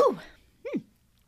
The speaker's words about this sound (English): I'm going to have to sneeze.